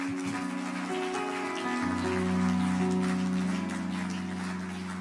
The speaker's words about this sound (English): Can y'all give one more hand clap of praise today?